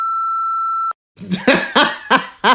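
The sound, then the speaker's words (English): A single steady voicemail beep rings out clearly for almost a second, then cuts off; after a brief pause, four or five loud rhythmic vocal bursts follow, like laughing or coughing. “Full disclosure, after the tone listener, I know who this has come from.”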